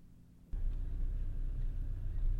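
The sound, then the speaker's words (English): A quiet idle hum jumps abruptly into a steady, heavy low rumble as a car engine revs up and the car drives along at a constant pace, with no voices. “So I got in my car and made my way to the place I swore I'd never return to.”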